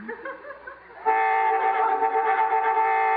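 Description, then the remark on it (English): A loud, sustained horn blares suddenly after a brief quieter tonal lead-in and holds steady without a break, dominant, with a brassy chord-like tone. “Boy, I hate honking during smooching.”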